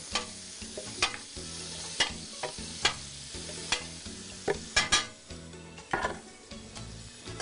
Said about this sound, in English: So I'm gonna grab my tomatoes, which as you can see, they roasted very nicely. Okay, I'm gonna add these to my blender.